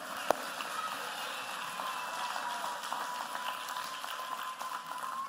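A steady round of applause from a group that includes kids, a dense wash of many hands clapping at once that holds at an even level for several seconds, opening with one sharp clap, applauding someone praised for being obedient and helpful.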